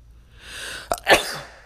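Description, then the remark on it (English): A single sharp sneeze bursts out after a brief intake of breath, loud and sudden, with a short noisy tail trailing off afterward. “Oh, just sneezed, oh my god.”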